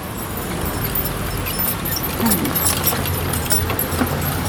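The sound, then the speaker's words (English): Busy city street traffic in Barranquilla, a steady low rumble of passing vehicles with scattered light clattering and clicks on top, moderately loud and continuous throughout, with no clear voices. “There was a lot of other things that I heard in Barranquilla besides the traffic.”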